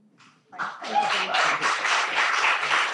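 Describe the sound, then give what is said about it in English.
An audience at the Brismas Annual Lecture of 2019 breaks into applause to welcome Professor Lale Khalili, after a brief quiet start, many hands clapping together in a dense, steady wash of sound that holds at a moderate level throughout. “And on that note, you don't have to clap me, but do clap Lale.”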